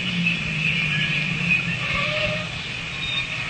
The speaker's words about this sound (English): Leave the engine running.